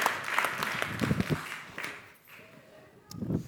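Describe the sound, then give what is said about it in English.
An audience breaks into applause for God after a healing testimony, a dense wash of clapping mixed with scattered voices that thins out midway and briefly swells again at the end. “Let's give God a wonderful round of applause.”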